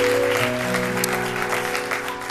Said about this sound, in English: And it's not only a foundation that I laid in him, thank you, Jesus, but his grandmother, who's celebrating her birthday today. So let's give her a hand clap of praise.